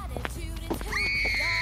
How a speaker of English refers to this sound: What was that? What? I don't know. I thought I heard a scream or something.